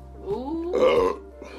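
A loud burp rumbles out for over a second, rising in pitch then swelling into a rough, throaty blast before trailing off, with faint background noise underneath.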